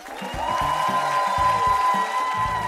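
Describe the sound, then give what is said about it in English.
The live audience of the public radio show Ask Me Another cheers and shouts together in a steady, sustained roar for nearly three seconds, with a high whistle-like tone riding over the noise, answering whether they support their local member station. “It sounds like a lot of people.”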